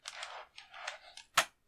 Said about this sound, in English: It just sounded like you're... It sounds like you're typing, what the fuck?